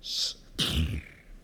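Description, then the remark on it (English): A voice imitates a horse's snort, the noise a man made as he broke into tears: a short airy hiss, a brief pause, then one loud, sudden blast of breath with a rough, fluttering low rumble that fades quickly. No words are spoken. “That noise that horses make?”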